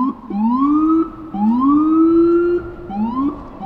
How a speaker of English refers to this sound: That's as loud as a police siren.